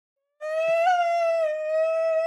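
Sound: yawn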